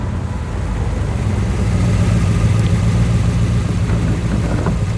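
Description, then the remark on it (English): The V8 engine of a 1967 Corvette L88 sports car runs steadily at a low, throaty idle, its deep rumble loud and holding even throughout, with no voices. “Is it a Corvette? 67, L88. Listen to her sing.”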